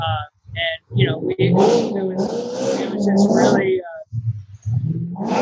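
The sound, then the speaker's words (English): A brief phrase of speech gives way to a loud muscle-car engine revving outside, its throaty roar rising and falling for a few seconds before talking resumes. “it just happens to be a lot of muscle car people out today.”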